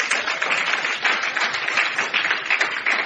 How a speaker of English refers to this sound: Some of you are not clapping, so I don't know what it means. It's okay, no problem. If your clapping was louder than your neighbor's, you will be a better shepherd than your neighbor.